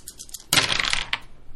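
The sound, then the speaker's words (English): A quick clatter of dice being rolled, tumbling across a hard table surface, a burst of bright rattling that settles after about a second, with no talking. “Okay, so I'm flipping the dice.”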